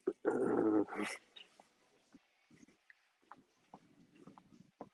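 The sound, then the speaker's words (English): A dog growls loudly in a single rough burst lasting about a second, then only faint, scattered low sounds follow in near quiet. “Yeah, so let me try to find a dog.”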